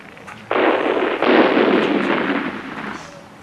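Two loud, close explosions burst one after another, each a sharp onset followed by a broad roaring rumble that slowly fades away. No voices are heard.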